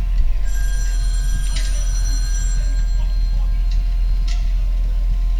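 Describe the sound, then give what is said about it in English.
A telephone in a hospital psych ward rings with a bright, buzzing bell tone, sounding in short repeated bursts over a steady low hum, loud. “Did you answer that goddamn phone?”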